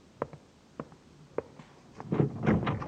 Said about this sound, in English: What was that noise? Who else is in this building? Nobody. Sounded like a door.